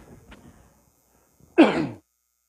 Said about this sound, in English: I got a cough.